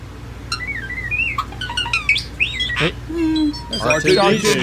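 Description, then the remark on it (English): A starling rattles off a fast jumble of electronic-sounding whistles, warbling bleeps, clicks and sliding tones, like a chattering robot, loud over a low steady background hum. “Starling. A starling.”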